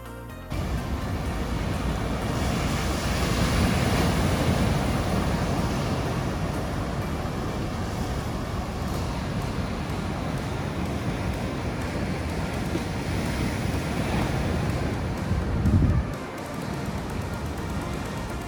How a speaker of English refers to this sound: sparkling sandy beaches, rolling surf, and epic Pacific Ocean waters.